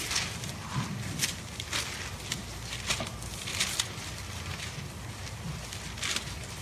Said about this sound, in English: Wow, I hear a lot of pages turning. Is that normal?